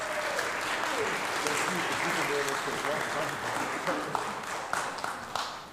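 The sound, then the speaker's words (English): An audience claps hands in thanks, steady, dense applause lasting several seconds, with murmuring voices mixed in underneath, tapering slightly toward the end. “You can say thank you or clap your hands, either way.”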